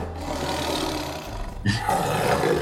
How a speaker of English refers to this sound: Okay, so you basically have a big lion roar, is that what you said? Yeah, sure, just some big old something sound.